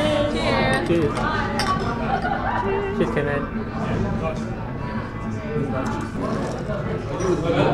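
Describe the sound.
Glasses clink a few times amid a lively crowd, with steady overlapping chatter and murmuring voices filling the room throughout.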